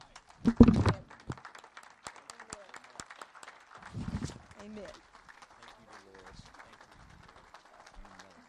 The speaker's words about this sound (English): I want us to all stand. I know you're coming on up here. I want us to stand, and I want us to clap and praise the Lord.